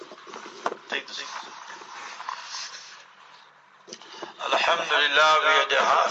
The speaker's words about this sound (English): Too much echo.